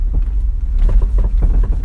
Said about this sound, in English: Splashing through a pool of puddles, the car creaks and groans like a much older vehicle.